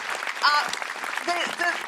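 An audience applauds the comedian Sara Pascoe, steadily throughout, a dense wash of clapping with a few short, high-pitched whoops and cheers rising above it.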